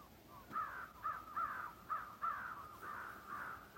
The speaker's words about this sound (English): The birds have so much to say, and my heart is still.